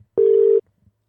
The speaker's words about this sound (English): I'm calling him from my phone, so I don't know if he's going to answer.